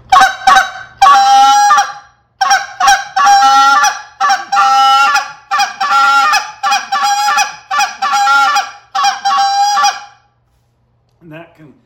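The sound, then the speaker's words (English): A goose call blown as an advanced comeback call, as used out in the field, in a fast, urgent run of loud, raspy honks and clucks for about ten seconds, then a pause and one brief, softer note at the end. “My advanced version of a comeback out in the field.”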